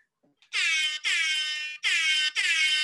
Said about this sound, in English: Air horns. 100 air horns. That's right. This is our 100th episode.